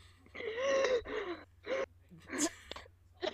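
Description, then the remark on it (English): A voice reenacts another person's breathing attack, imitating frantic gasping breaths: several strained, wheezy inhales in an uneven rhythm, fairly loud, with short pauses between them and no words spoken. “I will do a reenactment of her breathing attack.”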